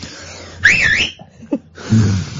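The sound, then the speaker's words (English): A man whistles a short, wavering tune phrase, rising and falling in pitch, heard through the wall from the next room of a studio. It's brief and moderately loud, followed by a few faint knocks and a low hum, with no talking. “can you stop whistling, Paul Ross? For crying, we can hear you through there”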